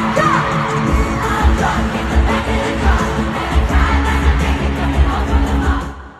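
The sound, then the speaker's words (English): A large concert crowd screams and cheers continuously for about six seconds, a dense, loud wall of yelling and whooping with a low rumble underneath, cutting off abruptly at the end. “And I'm glad that they're ready to scream because we should all be ready to scream.”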